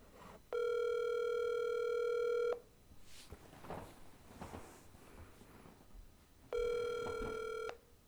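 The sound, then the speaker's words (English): An outgoing phone call rings over the line: two long, steady electronic ring tones separated by a pause filled with faint clicks and line noise. No one speaks. “Despite living only 15 minutes away from me, we're playing it safe with a phone call.”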